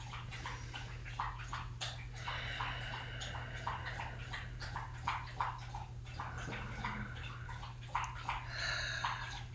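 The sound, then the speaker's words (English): A dog named Samson laps water in quick, steady wet slurps that continue throughout, with a low steady hum underneath and no voices. “You can hear Samson maybe getting a drink of water.”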